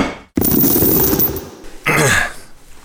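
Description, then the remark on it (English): A sharp metallic snap as bolt cutters bite through the chain on a warehouse door, followed by a second of jangling rattle and then another scraping, clanking burst as the chain falls loose. “All right, well, why don't you go ahead and pop that chain off the door and we'll open it up and see what's going on in this bad boy.”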